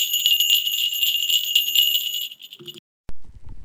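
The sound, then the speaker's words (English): Bright, high-pitched bells ring in a steady shimmering wash for nearly three seconds during a festive half-hour meditation practice, then cut off abruptly, followed by a brief pause and a low murmur. “So I hope you enjoy this practice and enjoy the bells.”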